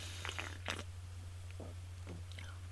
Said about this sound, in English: Let me take a sip. Oh, there's a cat fur on my drink.